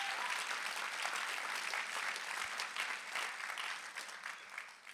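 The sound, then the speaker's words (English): An audience claps together in a steady, dense wash of applause that holds at an even loudness for several seconds, then eases slightly toward the end. No one speaks over it. “Come on, clap together if you believe it.”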